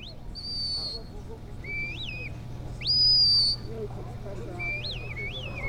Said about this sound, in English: Their handlers use a series of whistled and verbal commands to tell the dogs where to go and what to do.